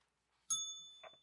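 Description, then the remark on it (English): A single bright bell strike, rung to end a speaking turn in a debate, rings out clearly and lingers with a slowly fading tone, and a voice briefly starts up near the end as the ring decays. “No points are awarded once the bell's rung.”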